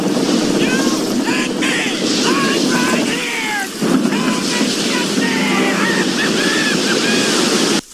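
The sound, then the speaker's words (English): A storm of crashing ocean waves and wind roars loud and unbroken throughout, with faint shouting voices half-buried in the churning noise. “You call this a storm?”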